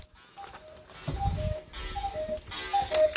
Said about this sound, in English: Did you hear the cuckoo clock? It was special. Hey, it did! It's 5 o'clock somewhere! It did! It's on time! The cuckoo clock, you're on time. Okay, uh-oh. No, you're not. It's 5:01. You're just a few seconds off, cuckoo.